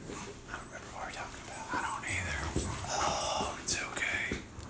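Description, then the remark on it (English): Puppies sniff and snuffle at one another's rears in quick, breathy bursts, with a few soft whimpers mixed in and faint murmuring voices in the background. “Those are Taylor's puppies this time, not mine. Quit sniffing.”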